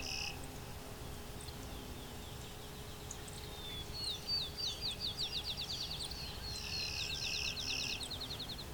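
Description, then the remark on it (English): A sparrow sings a rapid series of high, repeated chirps that run together into a steady trill, over a low hum and outdoor background noise. “So the sparrow is rather uncommon to this region.”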